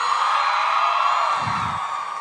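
A live audience screams and cheers continuously, a dense, loud wall of high-pitched voices that holds steady without a break, with a brief low thump partway through.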